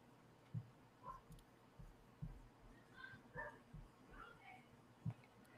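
Dogs yip and whimper, a scattering of short, high cries and brief barks, faint and irregular over a low muffled rumble.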